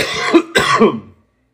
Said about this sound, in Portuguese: Pausa pra tossir.